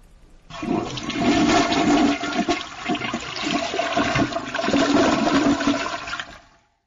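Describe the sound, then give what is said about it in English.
A toilet flushes loudly, a rushing, gurgling surge of water that swells, dips briefly, surges again and then cuts off after several seconds. No one speaks. “That was a loud flush.”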